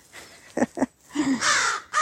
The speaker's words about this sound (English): And crow.